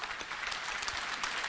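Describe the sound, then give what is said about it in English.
A crowd bursts into steady applause for a pastor, many hands clapping densely and evenly with no gaps, sustained at a constant level throughout the short stretch. “Clap your hands for this pastor.”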